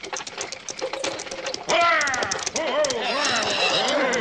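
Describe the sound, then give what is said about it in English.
Rapid, rhythmic clopping of horses' hooves as a stagecoach arrives, joined after a moment by loud overlapping voices and shouts as the hoofbeats continue underneath. “Yeah, I could have saved the horses a mite and been a bit late.”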